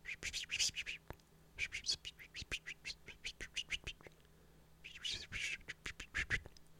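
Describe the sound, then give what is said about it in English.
A pen scratches across paper in quick, uneven strokes with small taps between them, close and fairly quiet, pausing briefly before another flurry of writing. “Maybe a sound like if I was writing something on a paper with a pen.”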